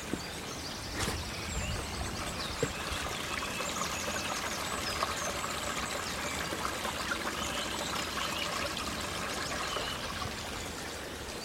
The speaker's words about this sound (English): Oh, there's a little streamlet here. So I'm going to cross. Lovely. Let's just listen to that stream.